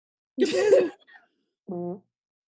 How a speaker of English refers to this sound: A tremendous fart.